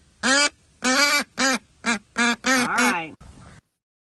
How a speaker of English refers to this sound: All right. It's pissing that duck off. They have so much personality.